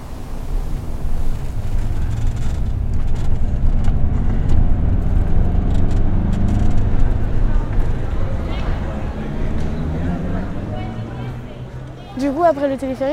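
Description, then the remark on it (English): Busy outdoor ambience in the square of the Latina district: a steady low rumble of passing traffic mixed with a murmur of voices and scattered clicks and footsteps, with a brief clearer voice rising near the end. “In fact, I'm in the square in the Latina district.”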